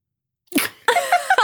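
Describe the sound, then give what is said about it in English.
A voice imitates a mother's sneeze that gets stuck and never releases: after a brief silence, a sharp breathy burst, then a strained, drawn-out vocal 'ah' held loud. “And my sister and I would like cackle in laughter when my mom would sneeze because it would get stuck and she would just be like, ah!”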